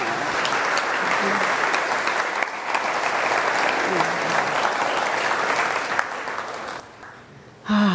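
Sustained audience applause for a guest who has been asked to stand: a dense crackle of many hands clapping steadily for several seconds, briefly thinning near the end before swelling again.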